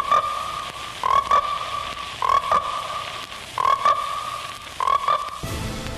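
Frogs croak in steady, repeating bursts about once a second, each a buzzy, rattling call over a constant high chorus of trilling frogs, fairly loud with no one talking.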